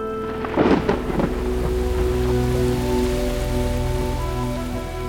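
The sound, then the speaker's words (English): Steady heavy rain pours down in a dense, continuous hiss, with a loud rumble of thunder breaking through near the start before fading back into the downpour. No voices. “Before she knew it, she was caught in a downpour.”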